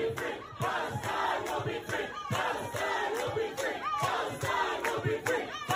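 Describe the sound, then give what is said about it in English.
A large crowd at a rally of Palestinian supporters in New York City chants "Palestine will be free" in unison, voices rising and falling in a steady rhythmic cadence with regular pulses, loud and continuous throughout, dense massed shouting with no single voice standing out. “They're chanting Palestine will be free.”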